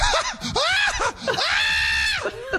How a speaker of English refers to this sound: What is that sound? God, dog.